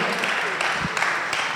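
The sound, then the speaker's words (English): An audience claps for Jesus together in a steady, dense wash of applause, with a few sharper claps standing out from the crowd. The clapping continues at an even loudness throughout. “Clap for Jesus.”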